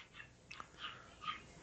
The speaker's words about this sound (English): Your dog going crazy in the background.